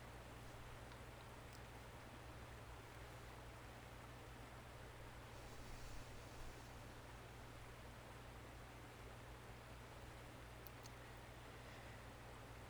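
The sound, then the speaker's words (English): A steady, even rush of flowing stream water fills the whole recording, soft and continuous without pauses, with no voices and only faint rustling flickers now and then. “The stream is just in the background.”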